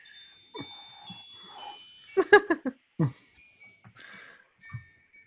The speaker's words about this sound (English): There goes Anthony's clock.